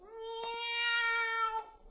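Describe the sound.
A boy's voice gives a single long, drawn-out imitation of a cat's meow from behind a hedge at about 5 o'clock, before dusk. It is fairly loud and held steady for over a second before trailing off.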